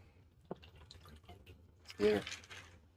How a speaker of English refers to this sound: Pour the whole glass. Big old glass of whiskey. Wow.